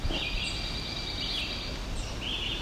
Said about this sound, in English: Okay, that really high-pitched one is what I'm thinking might be Cape May warbler. That right there.